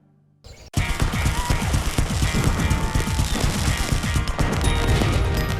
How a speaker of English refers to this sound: Fireworks. They're an American tradition, and for countless families, that tradition includes celebrating with fireworks at home, with friends or neighbors.